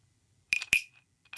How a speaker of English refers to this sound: What does that thing do? Not percussion, but no. It makes a sound. I've got, check this out, crickets.